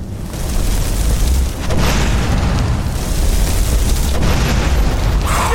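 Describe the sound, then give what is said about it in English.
A video game fireball spell explodes in a loud, sustained roaring blast, with fresh crackling bursts swelling at intervals over a deep rumble and no voices. “Fireball!”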